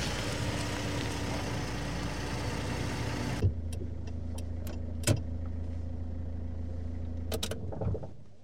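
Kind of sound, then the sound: vehicle, car engine idling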